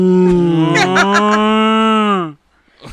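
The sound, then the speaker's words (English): A cow lets out one long, loud moo that holds steady for about two seconds before dropping off, with no one talking over it. “Just get a cow. Just buy a whole cow.”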